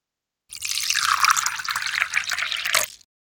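Tea pours steadily into a cup for a couple of seconds, a continuous splashing trickle that stops abruptly, with no voices.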